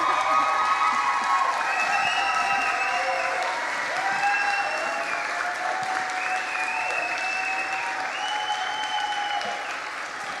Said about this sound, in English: Come on, can you give us another round of applause here?